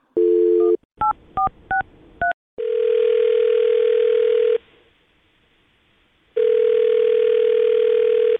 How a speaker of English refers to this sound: Well, we'll call his phone number right now and see if we can get him on the phone, okay? All right. Here we go.